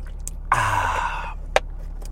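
Someone takes a sip of water, with a breathy, airy exhale lasting under a second, followed by a short soft click. No one speaks.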